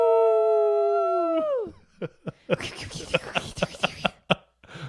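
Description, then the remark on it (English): A person lets out a long, loud imitation of a howl, holding a steady tone before it trails off and drops. A rapid string of short, noisy vocal bursts follows. “firelight bathes Darrow's face as he cocks back his head and howls”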